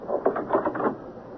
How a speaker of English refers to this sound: Close the bedroom door